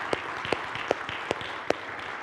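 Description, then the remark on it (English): A church audience applauds to thank those who led its Christmas Eve and morning services, in a steady, dense wash of clapping, with a few sharper, louder claps standing out every half second or so. “Would you give them a thankful round of applause, just as a means of encouragement.”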